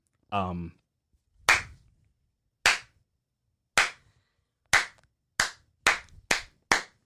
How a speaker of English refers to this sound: Enough clapping, please. Enough clapping.